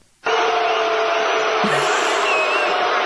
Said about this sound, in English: And excuse me, I'm trying to talk here. These people are rude. These booers over here. Some I said, excuse they, me. For some reason, they get louder.